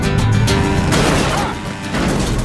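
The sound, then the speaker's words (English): Loud, crunching collisions of motorized Rascal mobility scooters ramming into a man's car in an advert, a dense clatter of metal impacts that eases briefly midway before surging again, harsh with little else audible. “They start by crashing their motorized rascals into his car.”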